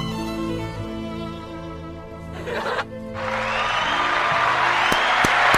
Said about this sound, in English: Ladies and gentlemen, the great Gary Roaster. Please, applause, please.